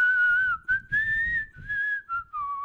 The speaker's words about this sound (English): It's the best I can do. It's not bad. My whistling sounds like a bunch of pigeons, man. Yeah, you sound like a fucking bird, dude.